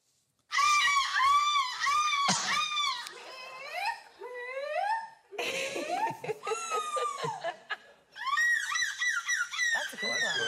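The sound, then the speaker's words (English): At an annual seagull screeching contest, several people take turns imitating seagull screeches, producing loud, high, warbling squawks with wavering pitch in rapid bursts, separated by brief pauses, vivid. “Here are some of this year's best seagull impersonators.”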